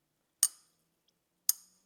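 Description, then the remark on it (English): Two sharp taps on a glass holding sparkling water, spaced about a second apart, each giving a bright, high ringing clink that fades quickly into silence. “So the amount of bubbles in the drink changes the way it sounds.”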